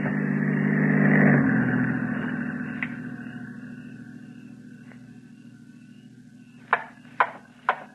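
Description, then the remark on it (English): The engine of a patrol car with a spotlight hums steadily, swelling louder as it draws near and then slowly fading away, followed by three sharp knocks near the end; no one speaks. “The car approaching has a spotlight. It is a patrol car.”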